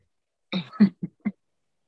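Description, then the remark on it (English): An abrupt sneeze bursts out, followed by a couple of short, clipped snorts or coughs in quick succession, with no talking around them. “Bless you.”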